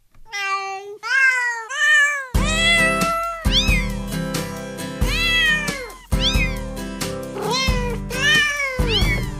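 Cat meows arranged into a Christmas melody: a few solo meows at first, then a steady run of pitched meows over a loud instrumental backing with bass and a bouncy beat.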